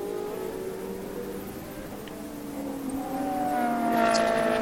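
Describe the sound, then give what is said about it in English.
GT3 race car engines on track, including an Aston Martin V12 Vantage, drone steadily, then swell louder near the end as a high, rising whine cuts in, like cars passing at speed. No one speaks. “CS Sport car, the third in the row here, but the quicker of the three cars at the moment on track.”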